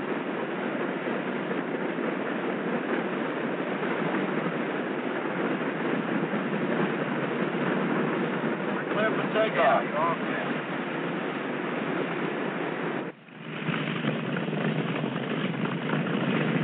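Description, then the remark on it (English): The four jet engines of airliner Eastern 601 roar as they power up to takeoff power at Idlewild after the brakes are released, a dense, steady rushing drone that holds level throughout, broken only by one brief dip shortly before the end. “Ready for takeoff. Takeoff power.”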